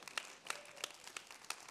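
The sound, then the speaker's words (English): A crowd claps in a steady, regular rhythm, with sharp unified claps landing about three times a second over a scattered background of hand claps. No one speaks. “Listen, just clap on them all. You'll get it. Just clap on them all.”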